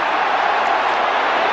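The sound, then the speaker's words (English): A big stadium crowd at the 1989 grand final between the Cats and the Hawks roars in a dense, steady wash of cheering in the opening minute, loud and continuous throughout with no single voice standing out. “Here's the first minute or so, because, boy, it was an interesting minute. Magic. City crowd.”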